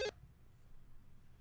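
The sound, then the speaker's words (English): An electronic telephone ringback tone sounds over a phone line on an outgoing call to All World Promotions: one burst cuts off at the start, a quiet low-hum pause follows, and the next ring begins just as it ends. “Here, I'm calling up AW right now. Oh, it's ringing?”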